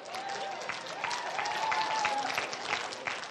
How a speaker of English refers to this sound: All the women are applauding. Now it's your turn.